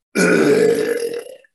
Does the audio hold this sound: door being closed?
no